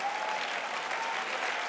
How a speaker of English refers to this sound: I thought there'd be more in the house that would clap for that, or maybe even stand and testify.